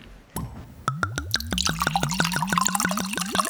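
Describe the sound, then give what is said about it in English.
A bottle of Charlie and Echo Dark Star wine opens with a brief pop, then wine pours out in quick, rhythmic glugs that rise steadily in pitch as the glass fills. No one speaks. “Okay, should we open up this wine? Yeah, let's do it.”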